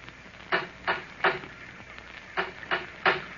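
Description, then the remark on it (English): Someone knocks on the wooden door of an isolated villa in the rain, in two sets of three firm raps with a short pause between the groups. The knocks are fairly loud against a quiet background, with no talking. “I knocked on the door and then waited.”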